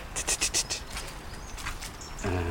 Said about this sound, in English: Dunnock wheedling further ahead. So much more birdsong than a week ago.